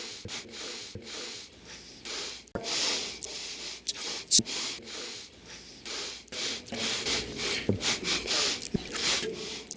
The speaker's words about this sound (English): I mean, he was sniffling a lot.